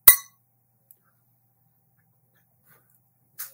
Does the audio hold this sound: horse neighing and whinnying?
no